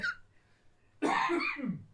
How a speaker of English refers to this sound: That was one hell of a cough.